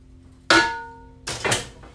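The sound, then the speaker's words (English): A sharp metallic clang rings out and fades, followed by a quick pair of clattering knocks, as pots bump together while someone cooks, with no talking. “Get the pots clanging.”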